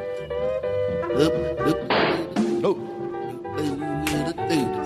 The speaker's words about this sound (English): Did you, was that a gun and someone getting hit over the head with a pot? Oh, what's that? I didn't know what that was.